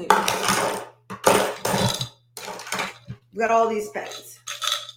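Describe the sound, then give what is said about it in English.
A handful of pens clink and rattle together in several bright, clattering bursts, with a short stretch of someone talking partway through. “I have all these pens.”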